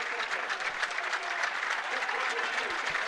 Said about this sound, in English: Yeah, Mikey gets a great ovation. Listen to this. This fella has been outstanding. Mikey gets a great cheer coming off.